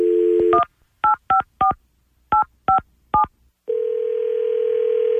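A steady telephone dial tone gives way to a quick series of about seven keypad dialing beeps with short pauses as a phone number is called, then another continuous line tone. Loud, with no voices.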